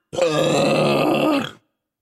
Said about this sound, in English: I like how there was a burp at the end of that. Yeah. It came out. It wanted to say, hello.